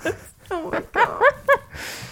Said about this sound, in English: That's his happy bark. That means somebody's back there. Really? Yeah, they're not playing with him. They're just back there, and he's so excited about it, which makes me sad.